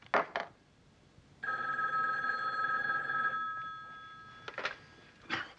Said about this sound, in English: Hold on a minute, Batman. That may be him on my private phone right now.